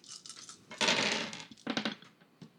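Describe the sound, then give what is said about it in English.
A handful of dice, rolled for an opposed check in a role-playing game, clatter and rattle: a quick shake, then a loud tumbling burst, followed by a few smaller skittering knocks as they settle. No one speaks. “I like the number of dice in your hands.”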